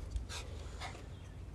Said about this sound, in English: Sorry, you might hear my dog panting around me.